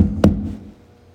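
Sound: banging on a door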